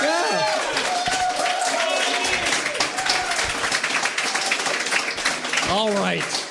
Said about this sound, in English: All right. Condescending applause.